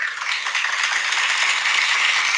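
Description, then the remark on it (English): A crew clapping together, a dense, steady patter of many hands that holds at an even, fairly loud level for a couple of seconds with no voices. “That's the crew clapping, mate.”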